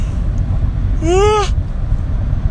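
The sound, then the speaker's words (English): A single big voiced yawn on a Friday morning, a brief tonal sigh that rises and then falls in pitch, heard over a steady low rumble with no other speech. “That was a big yawn on this Friday morning.”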